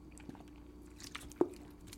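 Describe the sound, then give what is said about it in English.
Someone drinks water from a bottle, with soft wet mouth clicks and quiet slurps leading to one louder, low gulp near the end. No one speaks. “Let me get another dose of this.”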